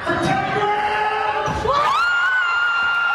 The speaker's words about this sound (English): Yes, he can, and the crowd goes wild.